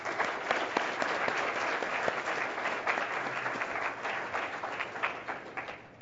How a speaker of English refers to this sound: Let's give our career panel a big round of applause.